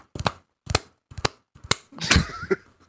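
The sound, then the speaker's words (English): Loose shoes slap against the floor in quick, sharp smacks, paired in a steady walking rhythm, five or six flat slapping steps with short pauses between, ending in a slightly messier scuffing flurry. “Sounds like someone's running up behind you. You turn around. It's just your shoes. Slapping around.”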